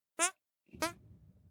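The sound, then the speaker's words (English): Two short, squeaky hand-fart noises, the second trailing into a low rustling rumble. “Hand farts.”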